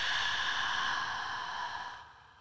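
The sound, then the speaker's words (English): A long, steady breath pushed out through the mouth as part of a breathing exercise, soft and airy, holding level for about two seconds before tapering off; alone with no talking. “We're going to breathe in through our nose for 5 seconds and out through our mouths for 5 seconds, okay?”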